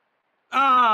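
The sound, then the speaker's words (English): A beaver passing gas in water at Willington Wetlands: after a moment of silence, a loud, buzzy and tonal flatulent blast starts abruptly and holds steady until the end. “And this is the elusive beaver fart.”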